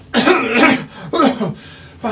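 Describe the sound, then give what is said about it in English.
A person gives a series of rough, throaty coughs, three or four bursts with short pauses between, performed as an imitation of someone coughing. “And he coughs.”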